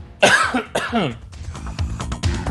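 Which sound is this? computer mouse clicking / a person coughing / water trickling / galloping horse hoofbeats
a person coughing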